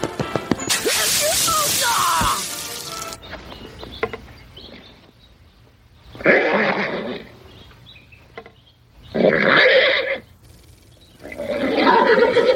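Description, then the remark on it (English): A horse being given an eye exam neighs loudly in a long, harsh whinny, then gives three shorter neighing bursts spaced a few seconds apart, with quieter stretches between them. “Oh, he's been giving that horse an eye exam forever.”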